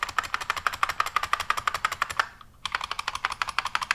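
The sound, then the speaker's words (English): Rapid, loud typing on an IBM Model M buckling spring keyboard, a steady stream of sharp, bright clacks with a brief pause near the middle before the clattering resumes. No voices. “So this is called a buckling spring keyboard, because inside of these keys is a little cylinder of plastic, and there's a spring in it, and when you push it so far, it buckles and makes a very tactile sensation.”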